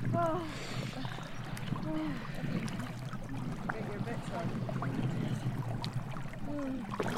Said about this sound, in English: The cold water seeps through my thick neoprene socks. I'm joined by some of the other women on the trip as we make our way into the cold sea.